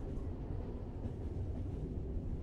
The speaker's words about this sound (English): When I hear this sound of the train moving, picture myself on it.